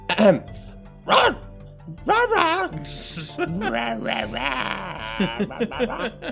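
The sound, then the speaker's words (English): A person speaks Gnoll to two gnolls to ask what they wish to do: two sharp, harsh bark bursts, then a quick run of yipping, chattering vocal noises, fairly loud. “And then they kind of look at her quizzically, and like then start barking back at her.”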